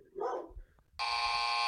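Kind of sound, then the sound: animal, dog barking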